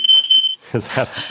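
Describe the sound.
A smoke alarm shrieks with a steady high-pitched electronic tone for about half a second, cutting off abruptly before a person begins speaking.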